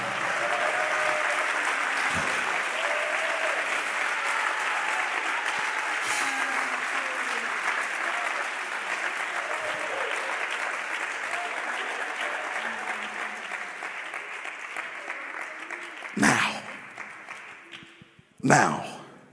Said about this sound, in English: Clap if you believe God for today.